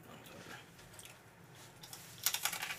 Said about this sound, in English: Munching.